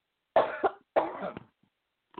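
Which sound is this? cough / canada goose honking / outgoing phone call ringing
cough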